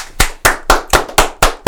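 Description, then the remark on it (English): Loud, sharp hand claps, seven in a steady quick rhythm, each a crisp smack with a short decay. No one speaks over them. “Loud ass hands.”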